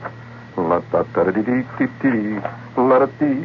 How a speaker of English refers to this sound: I better stick to humming, because all the words I know would just, I mean, I'll tell you, just blow up that cheap Japanese radio you got out there.